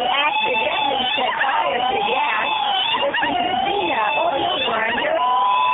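A loud, continuous warbling war cry in tribute to Xena, from the Warrior Whoop plug-and-play module by Xena Scream Industries, voices ululating with rapid trembling pitch that rises and falls, sustained without pause for several seconds, several voices seeming to overlap.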